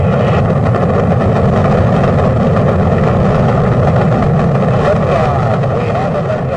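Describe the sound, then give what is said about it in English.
A deep, continuous rocket-engine roar at the 1969 Apollo 11 launch fills the whole recording, loud and steady with a rumbling low end and a broad hiss on top, no pauses or distinct voices. “2, 1, 0. All engines running.”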